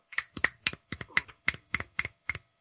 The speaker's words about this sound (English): Just snap your fingers, you fucking hipsters!